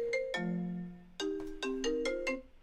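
A phone ringtone for an incoming call plays a bright, synthetic melody of several sustained tonal notes, some ringing out and others short and rhythmic, clear with no talking.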